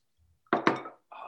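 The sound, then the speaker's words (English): Two quick, knocking clinks as glasses tap together in a toast, the second following closely on the first, then a short burst of soft rustling noise. “Cheers, my man. Clink.”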